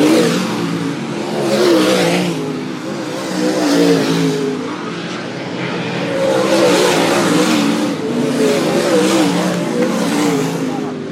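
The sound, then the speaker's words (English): Race cars roar and rev around Latrobe Speedway during a feature race, engine pitch rising and falling in several loud surging waves with a dense, continuous mechanical drone throughout. “Good time this year. First time at Latrobe Speedway.”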